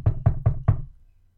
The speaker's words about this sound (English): And all of a sudden, there's a knock on the door.